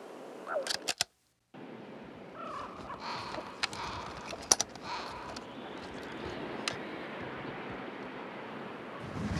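A flock of blackbirds calls while circling over the park at Columbus Circle, with scattered harsh chirps and caws rising over a steady outdoor wash of noise, plus a few sharp clicks and one brief dropout.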